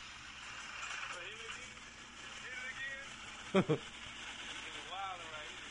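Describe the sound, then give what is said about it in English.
A person uses their mouth to imitate a revving car engine with a steady buzzing drone that rises and falls in pitch, broken by two sharp, loud bursts partway through. “You're doing the talking and the engine.”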